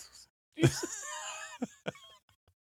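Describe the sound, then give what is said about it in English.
A deliberate, exaggerated cough breaks into a drawn-out strained vocal groan, followed by two short sharp coughs, fairly loud with no talking. “I'm coughing on purpose too.”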